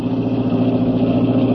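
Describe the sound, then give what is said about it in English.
The engine of a blue roadster drones steadily at a constant pitch, fairly loud, as it drives at night down a twisting bayou road at under 70, without shifting gears. No one speaks. “The blue roadster gathered moisture on its windshield as I drove down the twisting bayou road.”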